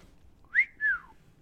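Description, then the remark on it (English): A single wolf whistle by a person imitating a crowd: a quick rising note, then a longer falling sweep, clear against a quiet background with no talking. “And maybe there's some like wolf whistles.”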